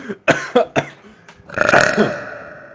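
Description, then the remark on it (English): Three short, gulping burps in quick succession, then a pause and one long, loud, drawn-out burp that rumbles and wavers in pitch for about a second. No talking. “Are those your breathing exercises or burping exercises, I should say?”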